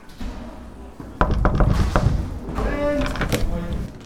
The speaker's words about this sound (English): Now, they've just finished a matinee and they're relaxing in their dressing rooms before the second show, so let's go and knock on a few doors and see how they're doing.